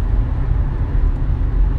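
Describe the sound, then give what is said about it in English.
Steady low rumble of a car moving along, the muffled road and engine drone heard from inside the cabin, continuous and fairly loud with no voices. “I'm driving in the car.”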